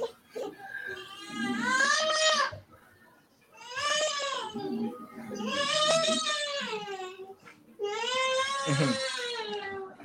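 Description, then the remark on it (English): An upset young girl screams and wails in four long, loud, high-pitched bursts with wavering pitch, separated by short pauses, with no talking over it. “I've heard that scream before.”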